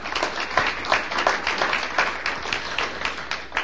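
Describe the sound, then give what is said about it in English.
A crowd applauds steadily after a poem reading, many hands clapping in a dense, even patter that holds at a moderate level for a few seconds without voices over it. “Something else that I forgot to mention at the beginning, I have quite a few poems, and so you don't have to applaud after every one.”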